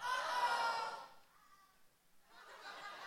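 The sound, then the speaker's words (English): An audience screams loudly together on cue after a count of three, for about a second, a dense high-pitched roar that cuts off and fades into scattered murmuring and faint chatter. “On the count of three, I want everybody to scream out as loud as you can.”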